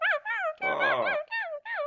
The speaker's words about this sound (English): Oh, there's a dog on the submarine. Okay, number one, submarines don't have that kind of a horn. The submarine, what does have that kind of a horn? Some sort of dog ship?